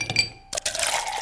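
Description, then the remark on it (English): A couple of light glassy clinks, then a steady splash of liquid pouring into a glass, its tone rising slightly as it fills. No one speaks. “I poured some of these.”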